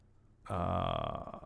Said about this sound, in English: Why do you always fart?